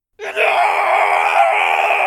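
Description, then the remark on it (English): A loud, rough-voiced scream of pain bursts out suddenly and holds steady for about two seconds, raw and strained, with no other sounds around it. “The scream became the latter half of a word.”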